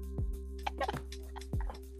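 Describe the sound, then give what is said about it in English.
A dog drinks water, lapping in quick, wet, splashy bursts, several slurps coming in uneven clusters over a steady low background hum with no one talking. “Can you hear my dog drinking water so loudly?”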